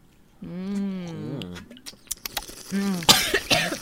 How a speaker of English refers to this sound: What was that? Are you kidding me? That was you coughing. I didn't cough.